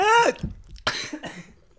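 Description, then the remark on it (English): A brief strained vocal sound gives way to two harsh coughs, the second one weaker, with no talking. “I started coughing.”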